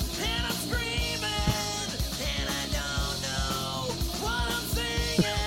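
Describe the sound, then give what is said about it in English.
A loud grunge rock parody song plays with distorted guitars, pounding drums and a mumbled, strained lead vocal, the full band driving steadily throughout. “He produced some great, great parodies. Listen.”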